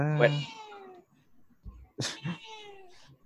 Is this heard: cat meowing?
yes